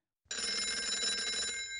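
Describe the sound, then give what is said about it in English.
A telephone rings as a call is placed to a guest, one sustained, rapidly trilling electronic ring that starts abruptly and stays loud for about a second and a half, with no voices. “And now we will get back to the show and call our first guest.”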